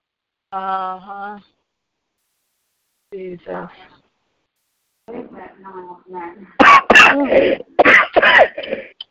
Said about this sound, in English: I hope you feel better. Get that cough on now. Yeah, because it's making my throat sore.